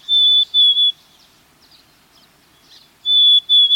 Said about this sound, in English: Quite a contrast to the plaintively whistled notes of the black-capped chickadee, often found in the same habitat.